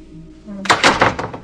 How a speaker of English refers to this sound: Cut to Stephanie closing the hollow core door. It makes that hollow core door sound.